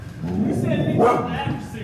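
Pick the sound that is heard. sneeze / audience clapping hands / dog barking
dog barking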